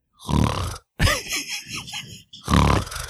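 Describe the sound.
Two loud, rough snores with a rattling, low buzz, separated by a stretch of wavering tonal sound; each snore lasts under a second.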